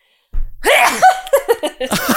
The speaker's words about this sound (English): Hang on. I'm going to sneeze.